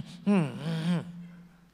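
A single loud, exaggerated breath drawn through the nose, lasting under a second with a voiced, groaning edge, followed by a quiet hum of room tone.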